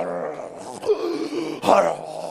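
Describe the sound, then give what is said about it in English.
A voice loudly imitates snoring, drawing out rough, groaning moans with two harsh rasping surges, exaggerated, with no ordinary speech. “Your snoring is like apocalypse has occurred in the house. The heavens are open and the demons are descending. Because this is how you are snoring.”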